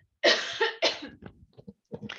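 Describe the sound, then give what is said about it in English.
Two loud, harsh coughs in quick succession, followed by a few softer throaty sounds and another rough burst at the end. “Oh, excuse me, I'm going to cough.”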